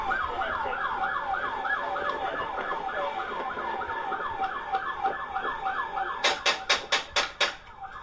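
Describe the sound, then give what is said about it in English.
A wailing siren warbles steadily, then six loud, sharp gunshots ring out in quick succession near the end, each a hard crack over the continuing siren. A man fires a gun from inside a car, shooting through the car's own window, in Las Vegas. “That's him shooting through his own window.”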